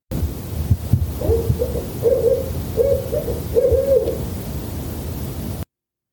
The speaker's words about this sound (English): this is a great time to hear the great horned owl. That classic hoot. Not unlike the barred owl we heard in the first episode.